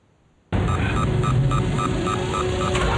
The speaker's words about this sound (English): Do you hear it? If you can ignore the beep. It's the Terminator walking.